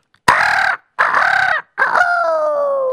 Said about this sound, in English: And Thursday morning, the rooster crowed.